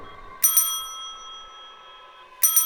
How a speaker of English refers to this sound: Now, see me somehow ring this bell.